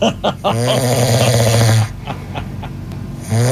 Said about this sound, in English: That's the classic snore right there.